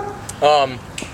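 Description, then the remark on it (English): A neighbor's dog, brought outside into an unfenced yard, gives a single loud bark lasting about a quarter second, set against a quiet outdoor background with a couple of faint ticks before and after. “Sorry, the neighbor brought out a dog and we don't have a fence, so.”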